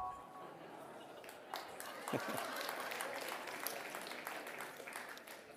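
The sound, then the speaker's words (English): An audience claps steadily for several seconds, a dense patter of many hands at an even level with a few sharper slaps standing out, and no voices on top. “Not quite sure why you're clapping, but okay.”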